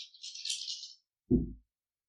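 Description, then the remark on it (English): During a tabletop game, players make their dice rolls: a bright, continuous rattle of dice shaken for about a second, then a short pause and a single low, heavy clatter as they land. No one speaks. “Now these other guys are coming up behind you, following you into the asteroid field. Now they need to make their rolls.”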